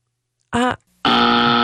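A brief voiced burst is followed by a pause, then a loud, harsh game show buzzer, sounded at a contestant for the answer "neither", blares at a steady flat pitch and keeps sounding until the end.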